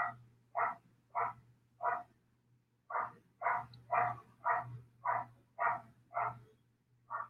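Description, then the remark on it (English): A dog barks repeatedly in New York in a steady rhythm, about a dozen short, evenly spaced barks with a brief pause midway, fairly clear over a low constant hum. “I'm sorry, there's a dog barking.”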